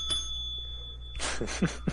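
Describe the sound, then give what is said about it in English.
A small podcasting bell is struck once, its bright, high ring lingering and slowly fading, followed by a stretch of soft rustling and knocking noises. “I have my Amazon voice device next to me and my computer, a glass of wine, my podcasting bell.”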